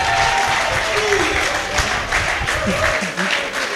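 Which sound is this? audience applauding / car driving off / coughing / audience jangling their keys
audience applauding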